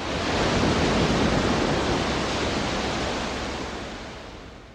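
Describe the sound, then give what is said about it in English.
A broad, hissing rush of ocean surf from a producer's seashore recording, the track he called the psychologically ultimate seashore, swells up quickly and slowly recedes, like a single wave washing ashore, steady and fairly loud with no voices. “One critic wrote, "Waves come splashing out of the speakers."”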